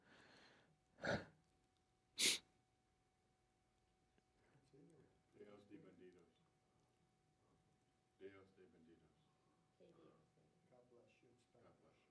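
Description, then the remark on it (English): Two sharp, loud sneezes close together near the start, followed by a stretch of quiet voices talking in the background. “God bless you in Spanish.”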